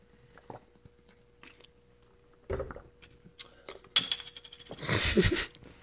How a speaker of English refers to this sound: Parched. Just drinking some water over here.